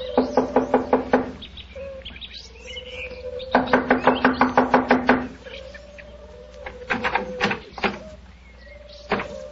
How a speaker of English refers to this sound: Here we are. I'll knock on the door.